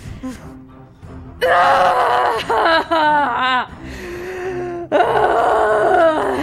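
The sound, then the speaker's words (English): A voice imitates a woman's agonized screeching as she clutches her eyes: loud, strained wails in several sustained bursts with wavering, trembling pitch, separated by brief breaths after a quieter low groan at the start. “as she's clutching her eyes and just screeching”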